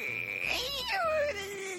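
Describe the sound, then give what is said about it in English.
A dog squeaks and whines through headphones in a thin, high-pitched cry that wavers and then slides downward in pitch, lasting about two seconds at moderate loudness with no talking. “Oh, there's a squeaking dog in my headphone.”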